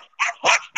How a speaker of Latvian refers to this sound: Suņi jau reja, tad jāiet tālāk.